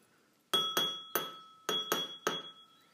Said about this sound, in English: Yeah, my Mercedes-Benz keyring that I have.